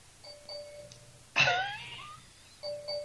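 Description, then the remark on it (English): A phone notification beeps in short two-note electronic tones, repeating at the start and again at the end, with a brief louder burst of noise in between. No one speaks. “You're sitting there saying, is this phone ever going to stop like beeping like that?”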